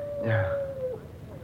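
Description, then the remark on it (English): A dog gives a short, moderately loud harmonic bark or yelp, backed by a long, steady, mid-pitched howl-like tone that holds for about a second before fading away. “The dog again.”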